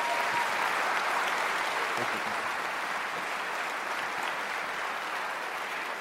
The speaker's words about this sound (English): Come on, let's give these guys a good hand clap as I wrap up.